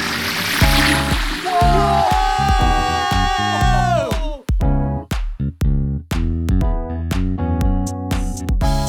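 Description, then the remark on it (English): A cartoon-style submersible dive down through the ocean layers toward the Mariana Trench on a marine safari: a bubbly watery whoosh and falling synth tones sink downward, then give way to a bouncy, loud musical beat with short stabbing notes. No one speaks. “Setting the submersible for the marine safari dive through.”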